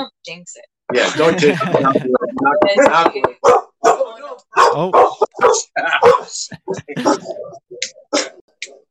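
Guard dogs barking at knocking, in a loud, rapid flurry of sharp, overlapping barks and yips that go on for most of the nine seconds, then thin out into scattered shorter barks toward the end.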